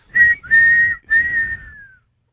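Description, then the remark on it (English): Three loud whistle blasts played as a sound-effect drop, in quick succession, each a shrill steady tone with a breathy rush underneath, the last one longest and sliding down in pitch as it fades. “Blow the whistle, then.”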